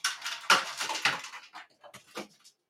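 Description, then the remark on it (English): A Christmas tree crashes over upstairs in a house, a burst of rattling, clattering impacts like ornaments hitting the floor, heaviest at first and trailing off into scattered knocks over a couple of seconds. “I don't know what the dogs just got into, but I think that the Christmas tree just fell over upstairs.”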